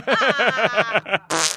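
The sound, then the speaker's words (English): A voice blows a loud, sputtering fart imitation, a quick run of about eight buzzy pulses, ending in a short breathy hiss. “Whoops, I farted.”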